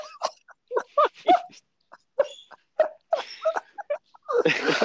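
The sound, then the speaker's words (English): The speaker's own squeaky door creaks through a string of short, whiny, pitched squeals in an irregular rhythm, ending with a louder, rougher scraping creak. “That's my door.”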